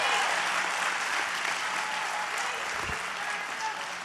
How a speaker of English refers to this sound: Come on and give Jesus some praise. Woo! Come on, if we're going to clap, let's do it well. Come on.